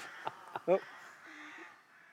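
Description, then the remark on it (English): Rooks caw a few times in the Pennines: two short, faint calls, then one louder, harsher caw, followed by a low steady hum in a quiet outdoor setting. “Listen to those crows. Or are they rooks? I'm sure they're one. Rooks.”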